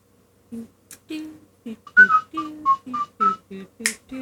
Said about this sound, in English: So as you're walking around the room, you begin to whistle a jaunty tune, a tune probably from your childhood.